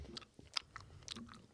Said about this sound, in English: Take your gum out. I'm going to keep chewing it. I went through all that work to put it.